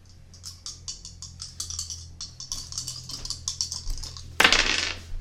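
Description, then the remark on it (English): Dice clatter across a hard tabletop in a rapid series of bright, clicking taps that build to a louder rattling burst near the end, landing on a 4, with a steady low hum underneath and no voices. “Roll on look to see how well that lands.”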